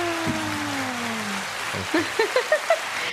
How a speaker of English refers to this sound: This is when we need one of those little buttons over there where you press the audience clapping. Oh, and I might have that. Hold on, let me see. Do I have audience clapping? So I can say congratulations.